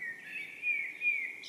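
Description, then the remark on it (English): A Swedish bird sings a sustained, high, thin whistling trill that swells slightly twice over a quiet outdoor background. No voices are heard. “And he's recording Swedish bird sounds as well.”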